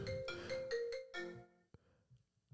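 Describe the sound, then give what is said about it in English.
A phone ringtone plays a short melodic phrase of bright, stepped electronic tones over about a second and a half, then cuts off, leaving faint room noise and a soft click. “It's my phone. Yeah, that's your phone.”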